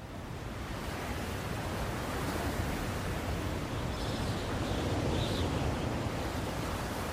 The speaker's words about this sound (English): We see the look on Diego Luna's shocked face, but all we hear is the ocean and the wind.